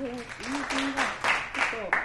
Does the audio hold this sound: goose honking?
no